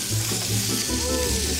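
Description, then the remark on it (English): A pan sizzles and fries steadily, about to burst into flames and getting smoky, a dense crackling hiss spread across the highs with a low hum beneath, holding at a fairly loud, even level throughout with no voices. “Your pan is about to burst into flames.”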